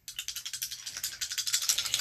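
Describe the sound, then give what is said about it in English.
Dice rattle in a quick, steady stream of bright, clattering clicks that run continuously for about two seconds and grow slightly sharper toward the end. No one speaks. “Please don't roll violently.”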